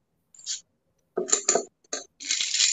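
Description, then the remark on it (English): A shaken cocktail is strained into a glass full of ice: a few sharp clinks and rattles of ice, then a steady splash of liquid pouring. No one speaks. “And you want to strain that into a glass full of ice.”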